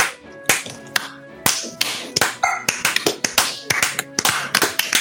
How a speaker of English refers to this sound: The entire arena was still for an instant as people breathlessly tried and to understand. And then they all clapped. Wait, slow clap.